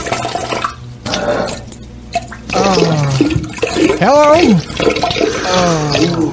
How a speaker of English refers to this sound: Oh, this piss coming out of me. Oh, God.